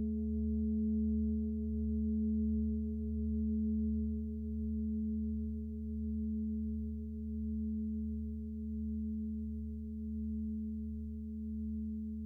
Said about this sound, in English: Is it multiple gongs or is it just one gong?